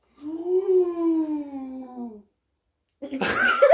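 A long, dramatic voiced gasp that holds a steady mid-pitched tone for about two seconds, rising slightly before sinking away. A short silence follows, then a burst of noisy, breathy sound.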